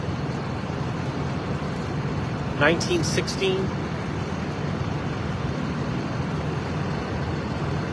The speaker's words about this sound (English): It doesn't say a number on the bus. It just says not in service. On the back, it says 19.